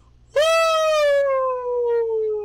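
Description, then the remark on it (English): A person's voice imitates a Bigfoot howl call: one loud, sustained, high-pitched wail that starts abruptly and slowly drops in pitch over about two seconds, heard alone. “What does it sound like if you had to recreate?”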